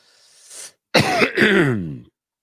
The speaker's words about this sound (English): I'm coughing it all out now.